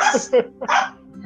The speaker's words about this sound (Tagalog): Ay, ingay din ng aso dito, nakakalong.